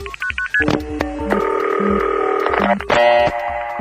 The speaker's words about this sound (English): You dial the LA number, and at that point, your line takes away the tone for just a moment. It goes silent. And LA goes, ah! New York wants to make a phone call. And then LA drops its tone, and the New York and LA machines talk to each other.